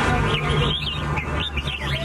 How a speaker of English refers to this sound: It's bird singing.